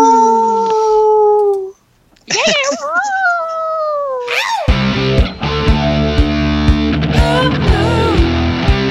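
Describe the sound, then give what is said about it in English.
People howl like wolves in long, rising and wavering cries, a few voices together, before loud, distorted music suddenly kicks in and fills the rest. “Excellent howls tonight, boys.”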